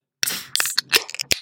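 A large crowler can of beer is cracked open with a sharp pop, then a rush of fizzing hiss broken by a few more crackling bursts as the pressure escapes. No one speaks.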